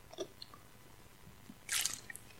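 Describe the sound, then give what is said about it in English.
A quiet sip of water: soft wet mouth clicks, then a brief slurping swallow, with no talking. “Some water here.”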